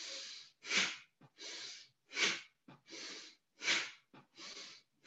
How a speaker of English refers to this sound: So you're just breathing in and out through your nose. Yes, exactly. Mm-hmm. You breathe in and out through our nose, and we'll be doing forceful breathing. So when the hands go up, we breathe in forcefully